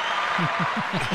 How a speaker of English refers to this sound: Wait a minute. I didn't get that kind of ovation. What the hell?